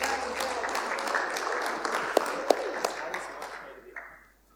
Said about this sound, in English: Why don't we give them a big round of applause?